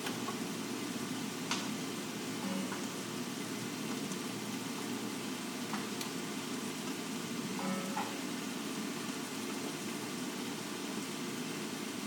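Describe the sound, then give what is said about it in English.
A steady, low sizzle of hot pan juices as they are squirted over a roasting chicken to baste it, over a faint background hum, broken by a few soft clicks and ticks, with no one talking. “Going to get some of the juices and squirt them over the top of our chicken friend.”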